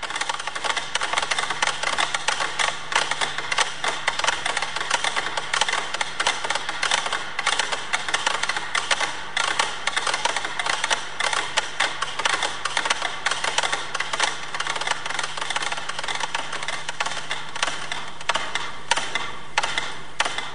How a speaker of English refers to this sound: There's 100 of them, all set to different tempos. The piece is called Poème Symphonique. Georges Ligeti wrote it in 1962 as a critique of contemporary music. As the composition progresses, more and more metronomes wind down and stop.